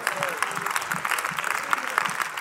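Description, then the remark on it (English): Sparse, scattered clapping, about four claps, uneven and brief, with a murmur of voices underneath. “Okay, I got four claps.”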